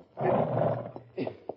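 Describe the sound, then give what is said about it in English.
Penned-up dogs growl and snarl: one long, rough, rumbling growl, then a couple of short, sharp snarling bursts. No voices can be heard. “Don't worry about those dogs. They're pinned up tight.”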